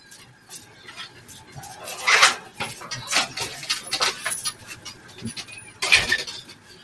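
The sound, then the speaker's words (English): A lively puppy, just let out, scampers around at a house with a small farm, with irregular bursts of scratchy paw steps and faint jingling tags, some louder rustles near the middle and end, and no talking. “Speaking of, they just let the dog out. But... oh, this is an active puppy.”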